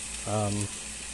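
Well-salted turkey breast steaks sizzle in a frying pan with a steady hiss throughout, briefly overlapped by a short voiced sound in the middle.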